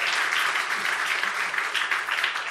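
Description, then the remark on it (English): A church audience applauds steadily for giving out over 500 boxes of food this year, many hands clapping at once in a dense, sustained wash of crisp claps that holds an even loudness throughout without any voices. “We gave out 500 boxes of food this year. Now clap.”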